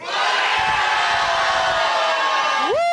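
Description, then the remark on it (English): A large live audience yells "bananas" together in one loud, sustained, dense roar for a few seconds, ending as a single voice whoops upward. “Everybody yell bananas as loud.”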